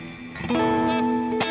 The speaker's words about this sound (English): I'm going to move to a different reverb for the delay. This is the reverb I'm going to be using. It's called the Natural Reverb. It's on the Kemper.